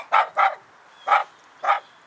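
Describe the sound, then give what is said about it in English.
A small Chihuahua yaps four times in high, sharp barks: two quick ones together, a pause, then two more spaced apart, with no other sounds. “Chihuahua!”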